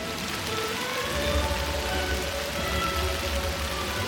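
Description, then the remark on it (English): Steady rain patters down on the umbrellas of a crowd of hundreds of people in the main square of Plains, Georgia, a dense, even hiss with a low rumble underneath that holds at the same moderate level throughout. Nobody speaks. “It was raining, but a crowd with umbrellas was still there, hundreds of people.”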